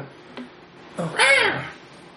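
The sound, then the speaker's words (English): A voice imitates a hawk's screech: one loud, rising-then-falling raspy cry lasting about half a second, preceded by a short click, with no talking. “Hawk, chase him away.”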